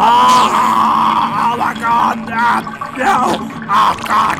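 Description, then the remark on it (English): A voice imitates gushing diarrhea from dysentery, making a sustained, loud, wet gurgling and groaning sound with pulsing bursts that continue for several seconds. “It's like water down this quick pouring out of me.”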